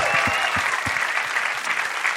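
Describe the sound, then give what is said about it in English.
An audience breaks into a steady round of applause, dense rapid clapping that stays loud and even throughout with no voices standing out. “How about a round of applause for Andy Haynes on that story?”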